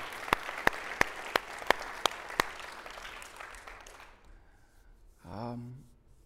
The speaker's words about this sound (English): So I think we should just applaud them. I know it doesn't do much, but thanks, guys.